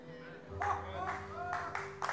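A church audience claps in a steady rhythm, about four bursts at half-second intervals, fairly loud, over sustained musical tones.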